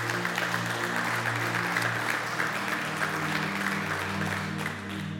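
Steady applause from a crowd fills the whole stretch, a dense wash of many hands clapping at once as a hand clap for God, with a low sustained tone running underneath and a slight fade near the end.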